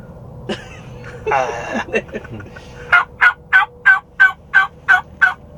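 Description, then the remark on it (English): A latex mouth diaphragm call imitating a turkey, played by blowing air between the tongue and the latex so it vibrates: a few raspy squeaks and a buzzy trill, then a steady run of nine sharp, evenly spaced yelps, fairly loud with no talking. “And then you blow air between your tongue and the bottom of this, and it vibrates the latex there, and it sounds like a turkey.”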